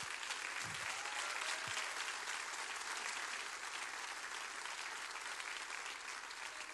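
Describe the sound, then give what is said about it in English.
An audience claps their hands steadily for several seconds, a loud, dense wash of many overlapping claps with no voices standing out. “Come on, clap louder.”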